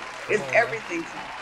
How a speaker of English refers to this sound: And you deserve a round of applause.